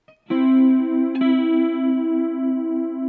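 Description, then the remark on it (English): A sustained electric guitar chord rings out loud, thickened by a heavy, shimmering chorus effect with reverb that makes it waver slightly, with a second strum re-striking it partway through. “So let's put a little bit more heavy chorus on there.”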